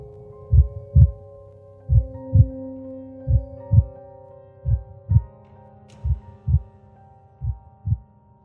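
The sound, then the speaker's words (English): A deep, thumping heartbeat captured on an unidentified cassette tape pulses steadily in paired lub-dub beats, about six pairs over several seconds, loud, with a faint low hum sustained underneath. “47: The Heartbeat”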